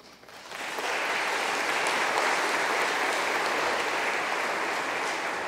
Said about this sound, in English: Number four, and not less important, 13 of our kids are receiving Christ for the first time. So that deserves applause.